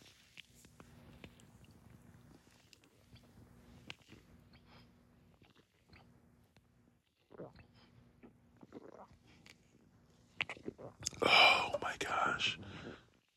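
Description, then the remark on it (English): Faint clicks and handling over a low hum, then a sudden loud burst of fizzing hiss as the tab of a 24-fluid-ounce can is popped open and drunk from, ending in a short slurping sip. “And of course, we can't just pop tabs and not sip cans. So we got to go in for that obligatory sip.”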